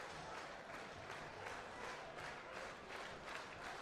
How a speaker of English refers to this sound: The crowd comes alive here at Russo Park.